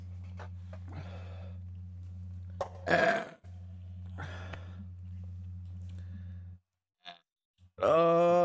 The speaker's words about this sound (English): Good burp. Those are good to shotgun too. That's the best seltzer I've ever shotgun.